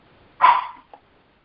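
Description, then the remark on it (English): A single bark from a puppy rings out once, moderately loud, followed by a faint short yip, otherwise quiet. “The pup's voice is a beautiful song. And this dog said amen.”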